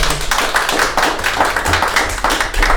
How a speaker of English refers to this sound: Big round of applause